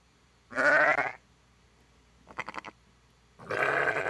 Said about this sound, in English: Ew. Are these sheep or llamas? It is sheep.